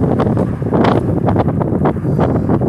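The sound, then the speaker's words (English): Loud, rumbling wind buffets the microphone in continuous gusts during an outdoor walk in windy weather with gusts of about 39 miles per hour, with low roaring and brief brighter bursts of noise, constant throughout. “However long a walk may be, I may make most of windy weather.”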